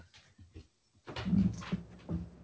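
A dog named Harper scratching at a door: a few soft, scattered sounds, a brief pause, then louder rough bursts of scraping with a whiny, tonal edge. No one speaks.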